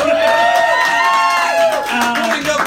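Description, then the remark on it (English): A crowd claps and cheers together, a steady wash of applause with whoops and raised voices rising above it for a few seconds, fairly loud; an audience applauding an improviser being introduced for a game of 5th edition. “And to do that, I'm going to need some improvisers, some very talented improvisers, starting with my wife of 21 years, and so she deserves applause for that alone.”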